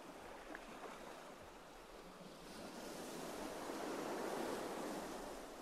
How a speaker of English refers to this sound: The splash of water on the shore, as waves crash up against rocks and droplets cascade back to foam.